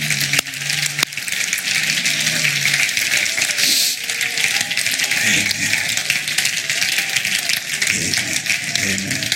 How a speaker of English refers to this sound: Oh, clap your hands one more time in praise to the Lord.